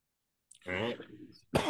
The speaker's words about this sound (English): That little cough there.